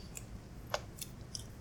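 Someone chews watermelon, producing a few soft, wet crunches at irregular intervals over a quiet background, with no talking.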